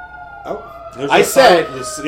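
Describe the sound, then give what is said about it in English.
An emergency siren wails steadily as it goes by outside an open window on a hot day, a sustained high tone running through the whole moment while a person talks over it. “I said, hey, let's leave the window open. It's very hot. Hopefully, sirens don't go by. All right, they're gone.”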